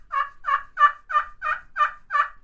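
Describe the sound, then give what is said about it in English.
A turkey call played on a pot and striker, the striker held like a pencil and tipped slightly away, gives seven even, raspy yelps in a steady rhythm, fairly loud, with no talking. “To cluck, you just basically push hard, okay, and pop it back to you.”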